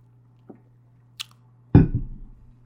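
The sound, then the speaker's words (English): A sip of piping hot French roast coffee mixed with Hawaiian hazelnut coffee from a cup: a faint click, a brief airy slurp, then a louder wet gulp that trails off over about a second, with no talking. “I do have a piping hot cup of French roast coffee mixed with some Don Francisco's Hawaiian hazelnut. It is incredible. I'm going to have a sip right now.”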